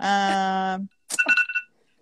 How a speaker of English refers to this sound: Oh, no. There's the timer. I even started it like a second late.